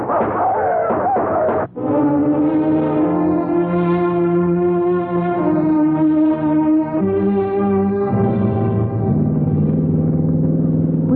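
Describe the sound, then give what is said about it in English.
A loud car engine roars up from a brief pause, holding a steady droning pitch that steps upward a couple of times as it revs and pulls away, with no voices over it. “He's evidently trying to get to our car.”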